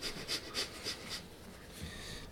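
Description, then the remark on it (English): Soft, airy breathing: about five quick, evenly spaced breathy puffs, then a faint steady hiss of air. No one speaks. “I can hear breathing.”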